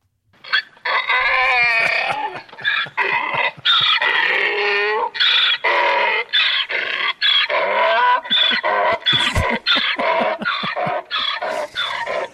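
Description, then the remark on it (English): A donkey brays loudly and agitatedly in a long run of harsh, repeated honking calls with barely a pause between them and no talking. “It's clearly agitated. It's agitated donkey.”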